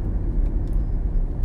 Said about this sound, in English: riding solo in the car today on my way to an appointment.